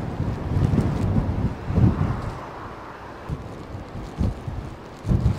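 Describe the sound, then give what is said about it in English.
Stormy wind roars steadily outdoors in a very old plantation, buffeting the microphone with loud low rumbling gusts that surge and ease every second or so, with no voices. “And honestly, I am really regretting coming out in this storm. It is horrendous, but I found a sheltered area here as we walk through this very old plantation.”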